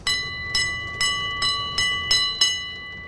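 A passing train on a noisy city street at 47th Street in Borough Park, Brooklyn, heard as a bright metallic bell clanging seven times in a steady rhythm, each strike ringing on over a low rumble. No one speaks.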